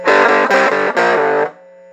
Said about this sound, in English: So yeah, I'm using my little 5-watt amp. It sounds better than it actually sounds to me. But it's really gritty. That's what you need. You can hear it humming. Yeah. So the riff starts off simple.